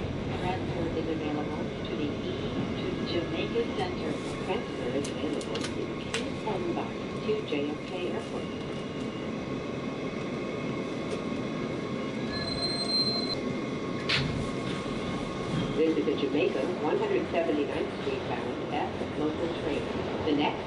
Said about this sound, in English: Transfer is available to the Kew 10 Bus to JFK Airport. Visit the Jamaica 179th Street bound F local train. The next stop is Briarwood. Stand clear of the closing doors, please.